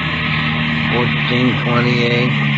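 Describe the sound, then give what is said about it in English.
A car engine drones steadily as it is driven to 1430 Palo Alto Drive in the Echo Lake District, with a few brief rising and falling whines as it accelerates or shifts, all over a constant low hum. “Ben and I drove out to check it.”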